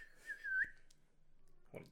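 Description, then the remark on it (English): A person whistles one steady note that slides and then flicks sharply upward, imitating a movie character's arrow whistle. A pause follows, then a voice briefly starts to speak. “Are you crip whistling, dude?”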